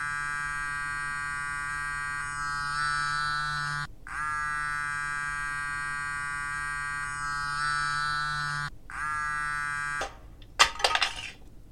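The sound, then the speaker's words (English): A mobile phone vibrates in long, steady buzzing pulses separated by short pauses, then vibrates out of a hand and falls to the floor with a brief clattering knock and rattle. No one speaks. “My phone just vibrated out of my hand and fell.”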